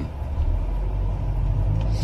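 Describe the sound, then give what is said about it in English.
A steady, low engine rumble from an armored Hummer in motion in Baghdad fills the whole stretch, constant and fairly loud with no talking over it. “Car is fucking moving. The car is moving, yeah.”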